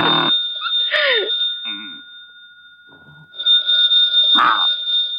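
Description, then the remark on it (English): A telephone rings loudly in two long bursts of bright, trilling bells separated by a short pause, with a steady high tone lingering throughout. “The phone's ringing.”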